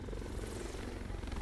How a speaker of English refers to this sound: At about 2 a.m., a helicopter was chartered to pick up a passenger, presumably Bobby Kennedy, from the beach outside Lawford's house.